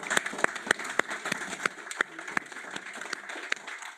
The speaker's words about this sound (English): It's been excellent. The panelists have been fantastic. So maybe just a round of applause first.